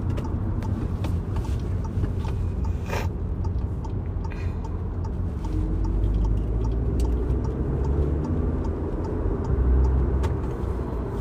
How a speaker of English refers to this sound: Ah, shit. Traffic.